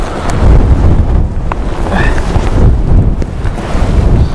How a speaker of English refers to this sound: Yeah. Even though it's windy.